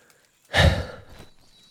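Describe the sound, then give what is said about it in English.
A single heavy, breathy exhale, fairly loud, rising sharply and trailing off over about a second, from someone breathing hard while climbing. No talking. “why did you start climbing without stopping the recording? I don't want to listen to your breathing.”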